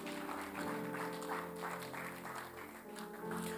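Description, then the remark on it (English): An audience claps for Jesus steadily for several seconds, a dense, continuous patter of many hands, with sustained low musical tones, like a keyboard or organ, holding underneath. “I thought you'd clap unto Jesus.”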